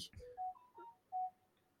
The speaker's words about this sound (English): Whose phone was that